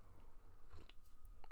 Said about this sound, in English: Let me clear my throat. Get a little sip of coffee.